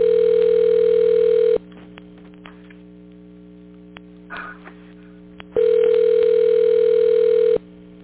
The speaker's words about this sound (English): You hear the phone ringing there. He's going to come on in a few minutes.